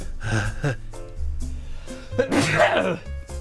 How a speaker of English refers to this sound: I got a bit of a cold again. I don't know. I think I have to sneeze now.